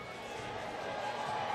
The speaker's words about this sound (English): Well, actually, they're just starting to hear it now. You can hear people cheering behind me.